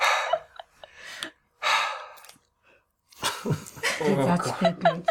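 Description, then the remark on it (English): A voice imitates a character breathing heavily while looking up after a fight: three loud, breathy huffs with short pauses between, followed by a longer stretch of strained, voiced panting. “As Sen is sitting there, a little blood on the puddle, looks up, breathing heavy.”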